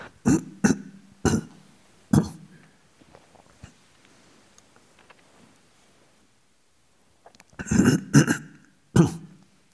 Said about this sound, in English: I have to apologize when I'm talking for clearing my throat, coughing. I might go into coughing fits as well, just for the fun of it.